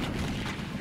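A cannon fire sound effect: a thick, rumbling boom that fills the whole moment, loud and sustained rather than a sharp single crack, with no voices.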